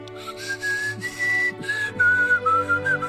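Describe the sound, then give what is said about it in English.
A person whistles a slow, wavering melody, sustained notes sliding between pitches over a soft background of music. “Oh, that really hurt my ears, the whistling.”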